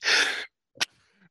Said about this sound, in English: Excuse me, I'm gonna sneeze.